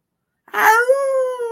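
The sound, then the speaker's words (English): A single dog howl starts abruptly after a brief silence and holds a steady, tonal pitch for about a second, sounding fairly loud with no one talking. “If the dogs come circling around, you got the dogs.”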